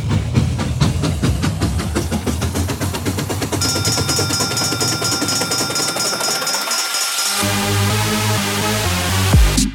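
A train engine idles before departure, rumbling loudly with a steady, rapid chugging pulse. A high hissing tone rides over it for a few seconds before the sound shifts to a deeper, heavier drone.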